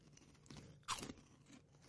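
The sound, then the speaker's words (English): A sharp crunch of someone biting into a crispy salt and vinegar vegan pork rind, followed by softer chewing crackles, with no talking over it. “I've never had a salt and vinegar pork rind, first of all. I just want to say that, ever. I've never had a pork rind flavored that flavor. Huh. The crunch is cool.”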